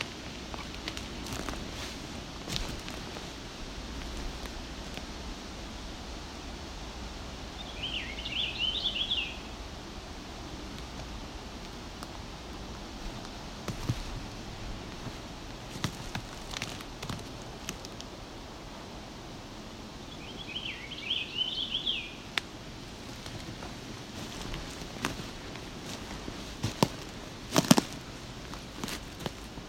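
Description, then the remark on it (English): A purple finch sings two brief warbling phrases about ten seconds apart, faint over steady outdoor hiss, rustling and occasional footsteps, in an area of black spruce and white cedar, with no talking. “More sounding more towards purple finch in my ears.”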